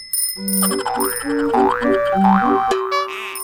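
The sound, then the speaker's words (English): A little tandem bicycle bell rings amid a bouncy, boing-like run of cartoonish tones that slide up and down in pitch, steady and fairly loud for a few seconds, with no talking. “Well, I think probably when you hear that little bell ringing, you can just imagine there are two people, you know, cranking the pedals.”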